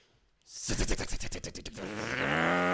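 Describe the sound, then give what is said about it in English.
A grown man's voice imitates a chainsaw: a gravelly, sputtering burst of rapid pulses that revs up after a brief silence, then smooths into a sustained, rising buzzing whine. “No, that was not at all a good chainsaw.”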